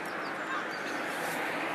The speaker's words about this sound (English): There's so many seagulls down here, it's cool. There's like, there must be about 30 seagulls around here in the morning.